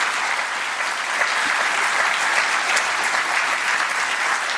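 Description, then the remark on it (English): Steady, dense applause from a sizable festival audience for writer Chris Teasley after his session, many hands clapping at once in a continuous wash of sound that holds at a consistent, fairly loud level throughout. “Can we have another round of applause for Chris Teasley?”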